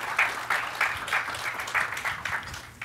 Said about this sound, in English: and maybe a short round of applause